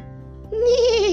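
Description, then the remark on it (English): A person imitates the whinny of a horse in a painting: one loud, quavering vocal call with a shaky wobbling pitch, starting abruptly after a brief low hum and holding for about half a second. “And when I walked by it, I swear to God, that horse whinnied at me.”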